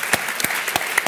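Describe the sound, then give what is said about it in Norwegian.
An audience at an event applauds an author longlisted for the Man Booker Prize: a dense, steady patter of clapping with a few sharper, louder claps standing out, and no talking over it. “Så som jo fortjener applaus og en stor brag.”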